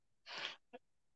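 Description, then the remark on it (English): A single sharp sneeze, a loud breathy burst lasting about a third of a second, followed by a brief voiced catch, with no talking. “Bless you, brother.”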